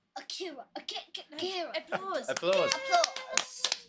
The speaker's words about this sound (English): Applause noise.